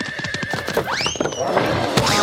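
A single horse whinny rises sharply and then trails off, loud, over a busy, clattering background of noise.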